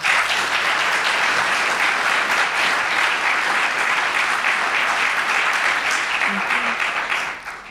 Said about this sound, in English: Would you please give her a hand of applause?